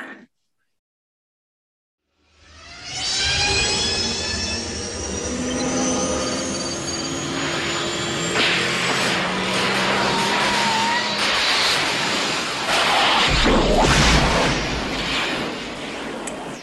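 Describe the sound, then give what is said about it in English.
A DeLorean time machine car departure sound effect: after about two seconds of silence, a loud, sustained mechanical roar with shrill, squealing tones rising and shifting through it, continuing for roughly fourteen seconds. “We're getting in the time machine.”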